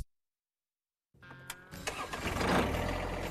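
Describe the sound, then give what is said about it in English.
After a second of silence, a tractor engine cranks with a few sharp clicks, then catches and swells into a loud, rough, steady rumble. “Start your tractor buying process off-right at Mead Tractor.”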